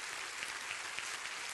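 A church audience applauds its elderly senior members in their 70s and 80s, a dense, steady wash of many hands clapping at once with faint sharper claps poking through, continuous and fairly quiet, no voices.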